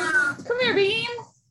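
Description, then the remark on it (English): A big 15-pound cat named Mr. Beam lets out a drawn-out, wavering meow, its pitch rising and then falling over about a second before fading into quiet. “and my cat is also really excited.”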